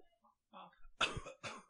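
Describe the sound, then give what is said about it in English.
A couple of sharp coughs, one right after the other, following a moment of soft, low murmuring and near-silence. “I'll try not to cough.”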